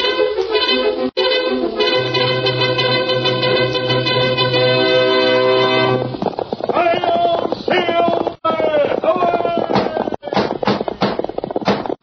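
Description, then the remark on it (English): Galloping hoofbeats of the Lone Ranger's fiery horse pound in a fast, steady rhythm, loud, coming in after a burst of brassy orchestral music and continuing as the music fades back. “Fiery horse with the speed of light, a cloud of dust, and a hearty high old silver, the Lone Ranger.”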